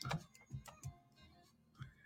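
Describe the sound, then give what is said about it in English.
A handful of irregular clicks and soft thumps from typing on a computer keyboard during a live broadcast, fairly quiet, with short pauses between keystrokes and no one speaking. “I'm typing this, amen, at the same time right here.”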